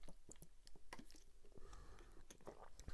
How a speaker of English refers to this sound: I'm going to take a sip and we can go into it.